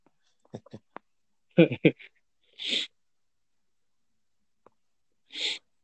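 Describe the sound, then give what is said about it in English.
Two short, hissy sniffs, spaced a few seconds apart, follow a quick burst of voice and clicking mouth sounds. Each sniff is brief and breathy, moderately loud against the quiet background. “Oh man, sniffling like I'm Tony Montana.”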